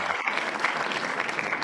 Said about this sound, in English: Listen, let me just give them. I wasn't a fan. Applause to them.